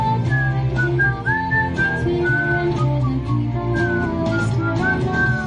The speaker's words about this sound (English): No, he's just whistling along.